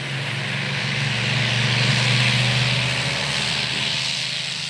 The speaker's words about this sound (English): After starting the engine, takeoff had to happen quickly, otherwise the cooling system would boil over. But the plane was sluggish at climbing, partly because the engine was never quite powerful enough for the plane's airframe.